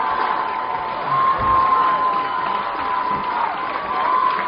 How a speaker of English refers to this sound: The crowd chanting Owosso. And what a thrill for these young ladies and this fan base.